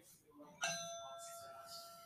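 A single clear strike of a memorial bell in Beckley, one of 29 tolls each marking a coal miner killed in a mine disaster 12 years earlier, rings out and hangs in the air with a long, shimmering decay, heard over a faint low background murmur.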